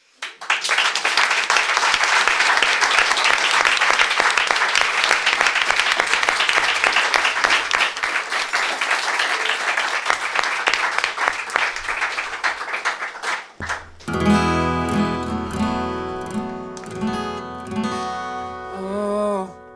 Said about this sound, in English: Raucous applause and the opening bars of a song are heard in the distance.